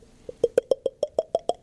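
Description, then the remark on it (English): A voice imitates liquid pouring: about ten quick, evenly spaced mouth plops, a steady glugging rhythm whose pitch climbs gradually like a bottle filling. No talking alongside. “Well, I could do like the pouring sound.”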